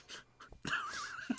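A dog takes a few quick, breathy pants, then lets out a long, wavering, high-pitched whimper lasting under a second, ending with a short snuffle.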